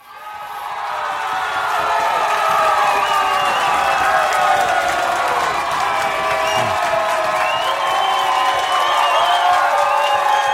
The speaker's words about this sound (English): Thank you. Thank you very much. Appreciate the applause.